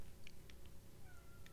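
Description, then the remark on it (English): A cat named Loki gives a single soft, short meow, fairly quiet, over a low steady background hum with a few faint clicks. “My cat just meow.”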